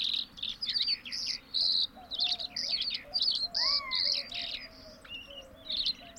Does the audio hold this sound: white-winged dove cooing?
yes